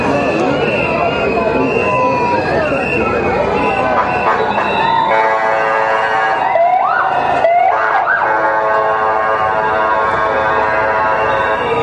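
A motorbike's emergency siren blares, its loud, wailing tone sweeping up and down in pitch over busy street noise after a few seconds of rumbling traffic.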